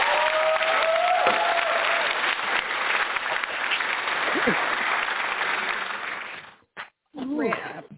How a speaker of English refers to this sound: Audience, give him a round of applause. A big North Carolina round of applause.